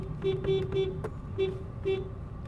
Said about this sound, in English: All right, cool. Honking at dogs. Okay, so for those of you that don't know, I honk at dogs.